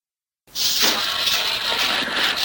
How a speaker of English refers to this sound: No, can you guys hear the blender in the background? A little bit.